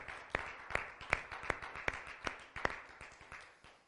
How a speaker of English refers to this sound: Let's give the Lord a hand clap tonight.